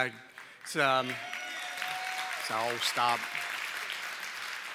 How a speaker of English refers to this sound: Thank you. Thank you. But I'm not going to let you off the hook with polite applause. Let's try this again.